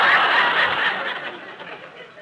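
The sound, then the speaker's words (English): A person's voice mimics a southern hyena's laugh: a breathy, cackling snicker lasting about two seconds, fairly loud at first and gradually fading. “The laugh of the hyena. A southern hyena yet.”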